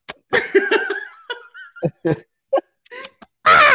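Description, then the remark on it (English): A man imitates the call of birds trying to mate, pointing his face up in the air: a string of short, nasal, squawking bursts with rising and falling pitch, fairly loud, ending in a harsher blast. “He makes like calls like birds that are trying to mate.”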